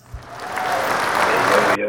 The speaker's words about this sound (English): Y'all clap it up one time for the boy.